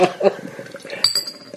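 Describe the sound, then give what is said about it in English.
A drink is poured into a glass, a steady gurgling splash with a few bright glassy clinks, one ringing tone standing out near the end, and faint voices in the background. “I always like hearing the pour of the podcast.”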